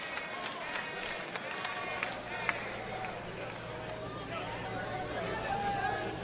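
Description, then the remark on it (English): A baseball stadium crowd at a league championship game roars in a steady wall of cheering and murmuring voices, building with every pitch, holding loud throughout and swelling slightly toward the end, with no distinct words. “Curveball in for a strike, and the count goes to 0-1, and the crowd builds with every pitch.”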